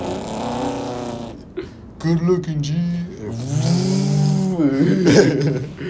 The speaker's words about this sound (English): While the car's fucking... fucking engines going off. Dude's revving the engine and shit.